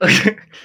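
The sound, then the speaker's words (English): A single loud, harsh cough bursts out, lasting a fraction of a second before trailing off into a faint breathy hiss. “that cough hit you hard, bro.”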